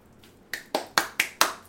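Quick, even hand claps, five sharp bright smacks in a steady rhythm with another just beginning at the end, following a short quiet lead-in, with no talking.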